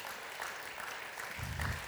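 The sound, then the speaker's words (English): A worship audience applauds God steadily, a dense wash of many hands clapping at an even loudness, with a low rumble swelling near the end. “Please just applaud the God for His victory in our lives.”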